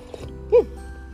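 A single quick slurping sip of coffee from a cup, short, standing out briefly against a quiet background hum.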